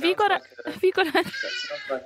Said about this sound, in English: By the way, … has joined us from Johannesburg, so what you can hear in the background there is a flock of parrots.